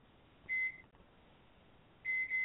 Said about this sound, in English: I hear somebody in the microwave. Somebody in the kitchen.